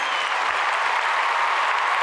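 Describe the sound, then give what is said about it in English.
A stadium applause sound effect: a roar of dense, steady clapping from a big crowd, loud and unbroken for about two seconds, with no voices standing out. “Well, and then get the stadium applause on hand.”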